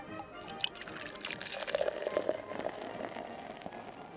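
Irish whiskey poured into a glass, a short gurgling trickle with a few splashy drips, steady and fairly quiet with no talking over it.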